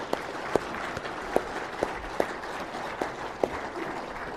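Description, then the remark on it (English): A crowd of people applauds steadily, a dense wash of clapping with a few sharper, louder claps standing out, no voices over it. “Fellas, if you agree with me, one more time, round of applause.”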